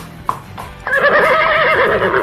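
After a sharp click and a short pause, a horse lets out a loud, long, quavering neigh that carries through to the end, clear with no one talking; a downloaded horse-riding jingle.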